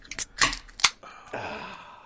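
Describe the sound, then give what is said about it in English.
A few sharp, metallic snaps of beer can tabs cracking open, followed by a soft, steady fizzing hiss of escaping carbonation. No one speaks. “Are you ready? Crack them open.”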